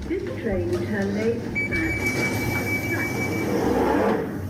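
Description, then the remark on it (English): A train rumbles steadily with murmuring voices underneath, and a thin, high, sustained tone rings out for about two seconds in the middle before fading. “It lets us know when we've got a message or when to mind the closing doors of public transport.”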